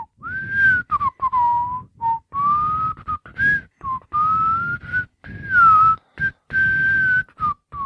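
Someone whistles a familiar melody, clear and steady, in short phrases broken by brief pauses, with gently rising and falling pitch and no talking.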